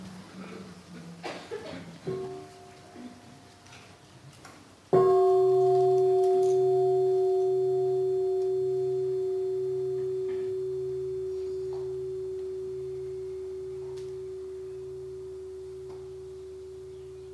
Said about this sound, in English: So let us listen to the bell and breathe three times before we ask the first question.